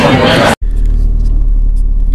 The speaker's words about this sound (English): So we are now back in the car and heading home.